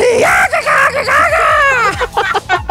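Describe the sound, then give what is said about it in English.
A loud, strained human dying scream from a film rises and wavers in pitch, breaking into ragged, gasping cries before trailing off, harsh. “What is this horrifying die scream before they fucking”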